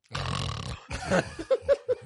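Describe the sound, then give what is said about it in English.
A voice imitates snoring: a long, raspy inhaled snore followed by a rougher rattling one, then three short, rhythmic snorting puffs, fairly loud with no speech. “You just snoring, sleeping ass nigga.”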